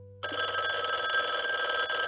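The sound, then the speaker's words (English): A house telephone bell ringing loudly and steadily around 12:30 in the morning after a brief moment of near silence, its bright metallic trill continuous, with no voices present. “Around 12:30 in the morning, the phone rang.”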